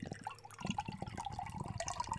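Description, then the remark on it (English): A sour smoothie pastry beer pours into a glass, a steady gurgling stream with bubbly splashes and small glugs running continuously for a couple of seconds, with no talking. “Almost pours like a Ouzel Finch Mueller.”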